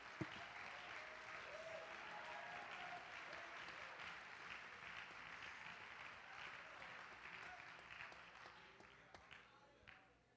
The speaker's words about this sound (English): Oh, clap your hands if you believe it right now.